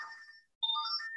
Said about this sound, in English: Okay, hold on. Okay, my phone was going off. My phone hasn't been working all day. And suddenly it's working.